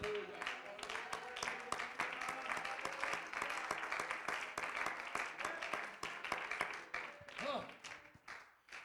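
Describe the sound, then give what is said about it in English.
An audience claps hands steadily, many sharp overlapping claps forming a dense, loud patter, with voices calling out underneath and a rising shout near the end. “Clap your hands unto God.”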